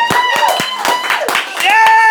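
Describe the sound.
Scattered, irregular hand claps ring out for a couple of seconds, mixed with raised, sustained voices cheering and whooping over them at a steady, fairly loud level.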